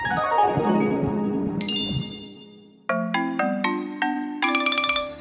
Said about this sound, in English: Thanks, …. That music means it's time to say goodbye for now.